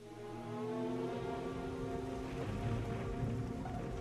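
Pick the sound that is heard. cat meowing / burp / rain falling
rain falling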